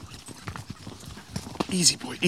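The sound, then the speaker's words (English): Uneven clip-clopping of a ridden horse's hooves striking a slippery rocky trail up toward cliffs, the steps irregular as if picking carefully over the ground, with a person's voice briefly heard alongside. “Bud's horse seems to have it out for me. Nice and easy. It is slippy up here.”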